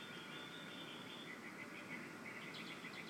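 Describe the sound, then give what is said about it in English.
Birds chirp and tweet repeatedly over a steady outdoor hiss, heard through an open back door before sunrise while it is still dark, quick high notes overlapping in the early morning quiet with no one speaking. “You all hear that? The birds are chirping.”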